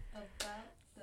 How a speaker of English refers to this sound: If you go to Titus has 3 freaking chapters of talking about the same thing. I'm clapping here for emphasis. About the same thing.